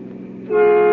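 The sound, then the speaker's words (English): A car horn blares over a rumbling engine as a car rushes at top speed along the left side of the road on a very warm afternoon, the steady honk swelling louder halfway through as the vehicle closes in fast, with no voices present. “Driving back to the city, Nick and Patsy meet a car rushing toward them at top speed on the left side of the road.”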